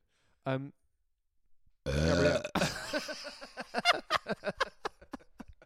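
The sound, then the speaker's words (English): A quick short burp, then after a pause a long, loud, rasping belch, followed by a run of rapid choppy vocal bursts. “I'm going to fire up, I'm going to load up another burp.”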